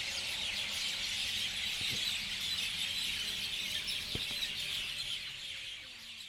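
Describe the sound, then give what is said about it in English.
A large flock of parrots in Muscat squawks and screeches continuously, a dense, shrill chorus of overlapping calls that fills the whole clip, with a couple of faint knocks underneath and no talking. “There are parrots everywhere!”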